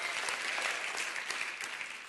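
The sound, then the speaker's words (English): An audience claps together at a preacher's call to clap for the Word of God, a dense, steady wash of applause, many hands overlapping into a continuous crackling roar at a fairly even, moderate level with no voices standing out. “Clap your hand to that right now, because the Word of God is our roadmap.”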